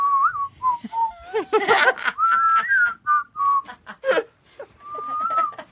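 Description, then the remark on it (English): A person whistles an eerie, wavering tune, the pitch sliding and bending between drawn-out notes and short breathy phrases, with no talking over it. “I have been walking around the house whistling …'s creepy whistle”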